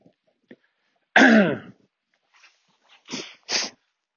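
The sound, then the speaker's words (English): Sniffing: a loud, throaty snort-like burst, then a pause and two short, sharp sniffs in quick succession, with no talking. “Sorry about the sniffing.”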